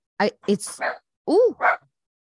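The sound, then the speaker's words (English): A dog barks at someone at the door in a quick run of five or six short, sharp barks, loud, with one rising yelp near the end before it falls quiet. “Someone's at the door. I have to get that or else he's going to keep barking.”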